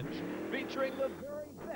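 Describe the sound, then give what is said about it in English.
A loud, steady engine roar from a jet-powered tractor-pull vehicle at a United States Hot Rod Association (USHRA) event, its pitch rising and falling, with people talking over the din. “That's a jet motor, bro.”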